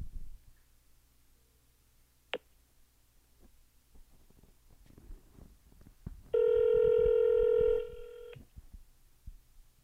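Faint clicks and taps of a phone call being placed on Zoom, then one loud, steady electronic ringing tone that holds for about two seconds before cutting off. No one speaks.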